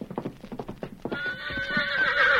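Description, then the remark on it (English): Rapid hoofbeats clip-clop at a steady canter for about a second, then a loud, high whinny rises and trembles over the last part, clear. “There's a horse for you, Jackson.”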